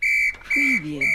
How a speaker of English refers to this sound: That's the final whistle. Oh, there it is.